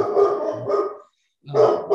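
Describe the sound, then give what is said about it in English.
A dog barks in two loud, harsh bursts separated by a short pause, with no talking over it. “What kind of dog you got?”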